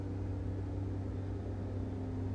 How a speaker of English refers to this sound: Let this truck pass.